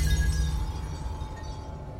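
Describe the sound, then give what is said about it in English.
A glass gives off a thin, sustained ringing whine over a dense low rumble, then breaks apart in a fairly loud, noisy shattering, with no voices present. “The glass whines, sings, and shatters.”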